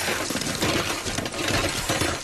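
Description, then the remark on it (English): Someone rummages through a cluttered junk drawer: a dense, continuous clatter and jangle of small hard objects, metal and glassy bits rattling against each other for a couple of seconds, fairly loud, with no voices. “Let me go back into the junk drawer.”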